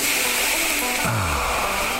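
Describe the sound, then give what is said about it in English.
A steady, loud sizzling hiss fills the whole clip, and a low downward-sliding tone about halfway through suggests roadkill meat being slapped on a hot grill. No one speaks. “Whether it's a mystery meat stew or a hearty treat that even provided antlers for over the fireplace, you slap it on the grill and...”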